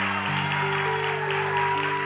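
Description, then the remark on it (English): A church audience claps steadily to thank God for Pastor Tyler, a dense wash of many hands sustained at even loudness throughout, with a faint sustained musical tone underneath. “Let's clap and thank God for Pastor Tyler.”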